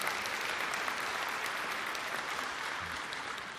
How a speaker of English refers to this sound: It's funny what we clap for, but thank you for that. I appreciate that.